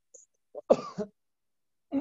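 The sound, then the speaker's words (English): A strained, painful cough bursts out with a rough throaty edge, then after a short pause another cough begins; no talking. “It hurts so much to cough and sneeze.”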